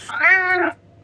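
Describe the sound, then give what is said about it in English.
A single cat meow, drawn out and rising then falling over about half a second, clear with no talking over it. “Yeah, my cat's there.”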